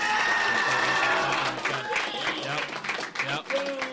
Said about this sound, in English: Audience, what do you think about the skill we have at Algonquin? I'll just let you respond with a applause.